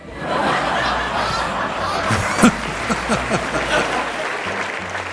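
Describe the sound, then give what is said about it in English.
A crowd claps steadily in dense, sustained applause, with scattered laughter and a few brief whoops rising above the clapping throughout. “This is like prisoners cheering the warden.”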